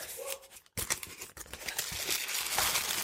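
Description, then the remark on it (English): A cardboard box holding a G-Shock watch being opened: scratchy rustling and crinkling of packaging, a brief pause, then steady scraping and tearing noises that keep going, with no one speaking. “All right, so we have a cardboard box.”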